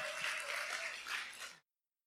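A brief burst of audience cheering and clapping, a dense steady wash of hands and voices that cuts off abruptly after about a second and a half.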